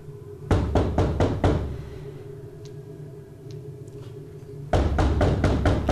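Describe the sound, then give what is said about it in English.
Five quick, evenly spaced knocks on a door ring out loud over a low hum, followed by a lull before a loud, broad rush of sound swells in near the end. “No, it's just let me just knock on the door.”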